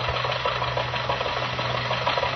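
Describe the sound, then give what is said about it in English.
Jack Benny's car engine runs steadily as he and Rochester start for the Hillcrest Country Club early in the morning, a continuous low droning hum with a rough, buzzing texture and a constant level throughout. No one speaks. “In fact, bright and early this morning, Jack and Rochester got in the car and started for the Hillcrest Country Club.”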